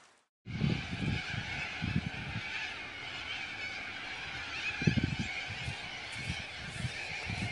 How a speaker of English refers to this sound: 3 o'clock in the afternoon, Miss Seeking Plum, and the cockatoos have taken to the sky. It's very warm, again, 30 degrees Celsius here in Perth, Western Australia, where we have a lot of open spaces, a lot of grass, trees, plants, and wildlife.